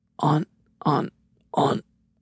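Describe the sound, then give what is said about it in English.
Three wet, gurgling coughs in an even rhythm, each a short throaty burst, separated by brief pauses with no talking in between, as the Welgo character coughs up grease. “You're coughing up so much grease, I can't understand you.”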